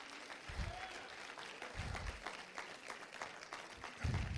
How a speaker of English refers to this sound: Will somebody give him a hand clap of praise?